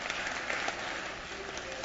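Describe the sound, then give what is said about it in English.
An audience applauds steadily, many hands clapping at once in a dense, continuous patter that holds at a moderate level throughout, clapping in sympathy after a speaker announces his seventh wedding anniversary. “Seriously, that is more of a hand clap than I've received all morning.”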